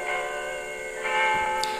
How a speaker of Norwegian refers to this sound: For første gang var klokkespillet på Oslo Rådhus kongesangen utover.